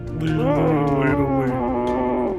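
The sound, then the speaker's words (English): A person imitates the scream of Magdor, a monster: one loud, sustained, growling howl lasting a couple of seconds, its pitch wavering and dipping toward the end. “Can we hear what that scream sounds like?”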